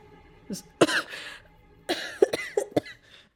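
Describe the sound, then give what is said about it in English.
A person 4'11" tall coughs and sputters, coughing up water after being submerged, in two harsh fits of several rough bursts each, with no talking. “Coughing up water as my 4'11 self has been submerged enough.”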